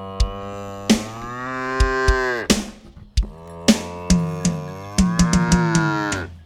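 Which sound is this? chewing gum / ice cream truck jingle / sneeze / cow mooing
cow mooing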